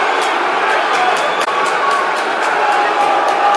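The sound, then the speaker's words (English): A large football crowd at a Wigan match roars steadily and loudly after a penalty by number 10, Windass, goes high over the bar, a dense wash of voices with a regular pulse of clapping running through it for the whole stretch. “That's got the crowd into it.”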